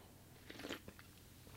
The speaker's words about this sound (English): I'm going to have a sip of my coffee.